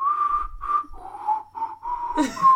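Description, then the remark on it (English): A person imitates a whistling pig with a wavering, mid-pitched whistle in several short bursts, ending in a breathy, squeaky flourish. It is fairly loud, with no talking. “It's like a whistling pig following...”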